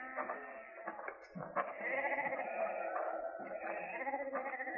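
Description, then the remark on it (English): Several sheep bleat over one another in a steady, overlapping chorus, fairly loud, with wavering nasal cries filling the whole few seconds and no voices. “He's your sheep?”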